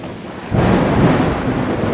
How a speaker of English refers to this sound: He said, once when I was a wagon driver, there was a terrible storm. Rain was coming down all over the place.